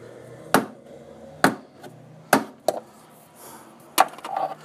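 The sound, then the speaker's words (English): A sunscreen can is banged against the wall of the Summer Shrine in Dragon Manor: four sharp, hard knocks at uneven intervals, with one lighter tap after the third, over a faint low hum. “You spray it on and it rhymes with bun screen.”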